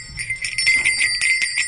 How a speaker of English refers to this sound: That is, you have to wear it when you're in the mountains in Hokkaido so that you don't get eaten by a bear. Get out. You have to wear a bear bell, yep. Carry spray, and clap a lot, and talk on the trail.